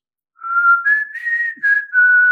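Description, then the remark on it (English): A person whistles a short tune alone, a clear, steady tone that steps up and down in pitch through a few connected notes, fairly loud. “And I heard whistling. Somebody was whistling.”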